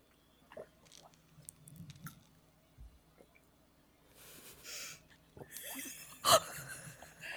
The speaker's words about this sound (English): Desperately watching both of us drink water from afar.